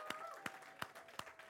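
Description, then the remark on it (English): A group claps together in a steady rhythmic beat, about three claps per second, fairly quiet, with a faint sustained tone running underneath. “Cheer them on, guys. Cheer them on.”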